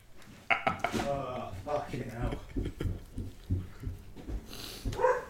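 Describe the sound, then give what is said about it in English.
A dog howls in drawn-out, wavering cries at an Amazon delivery, with voices talking over and around it and some clattering in the background. “I literally put my arms up in the air as I say my own name, as just glorifying myself at the same time as Kiki started howling”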